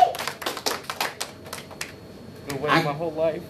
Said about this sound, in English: So if you're a Chiefs fan, you need to know, clap that up. Yeah. Clap that up, for real though, clap that up.